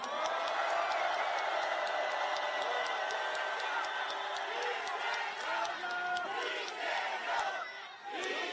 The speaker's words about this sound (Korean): 여러분, 너무 욕만 하지 마시고 불만이 있더라도 참으시고 민주당 국회의원들에게 응원의 함성과 박수를 보내주시기 바랍니다.